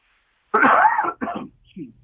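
A loud cough bursts out in a laundry room, rough and raspy, followed by two shorter, weaker hacks trailing off within a couple of seconds.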